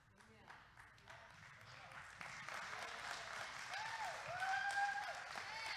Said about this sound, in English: Nice little golf clap on the golf course.